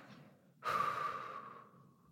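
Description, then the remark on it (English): A single long breath blown out through pursed lips, starting suddenly and trailing off slowly with a soft airy whoosh and a faint whistling edge, fairly quiet, with no talking. “And if you like, you can let out a little sigh with your out breath, or maybe it might feel nice to make it nice and long through your lips, just like you're blowing out a candle.”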